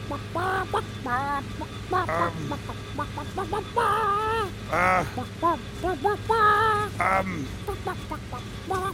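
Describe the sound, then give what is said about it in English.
A person imitates a clucking chicken, with a rapid string of loud, squawky clucks and drawn-out bawks over a low steady hum. “That's a very good chicken.”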